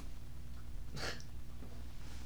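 A pet gives a quick, breathy sniff under a door, soft, against a steady low background hum, with a fainter snuffle trailing just after. No one speaks.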